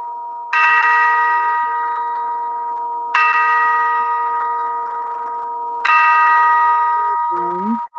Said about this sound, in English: The bell sounds are picked up. The clock begins to chime, ringing the hours.